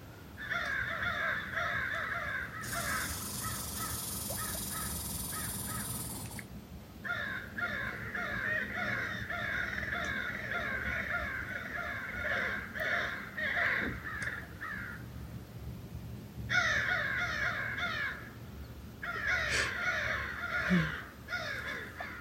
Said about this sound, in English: Maybe that the crows are riled up because Eagle is there. I can't see that, but I hear the commotion.